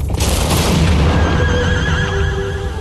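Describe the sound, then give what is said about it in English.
A video-game horse named Aggro neighs loudly, one long shrill whinny that trails off over about three seconds, with a dense rumbling noise underneath and no one speaking. “She's a good horse.”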